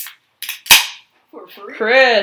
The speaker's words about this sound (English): crack open your Modelo. Take a sip. Take a sippy. Just for all the ASMR fans.